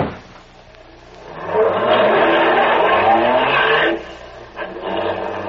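A car roars up and speeds past, loud for a couple of seconds with a harsh scraping, skidding edge, then cuts off abruptly as it hits a young man pushed in front of it, followed by a brief bump and rumbling engine noise.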